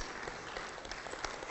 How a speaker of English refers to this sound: It is a Sunday in August, and you are here. Amazing. Give yourself applause.